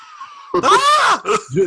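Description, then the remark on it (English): A person lets out a loud, strained scream lasting under a second, followed by two shorter, breathy cries. “I scream.”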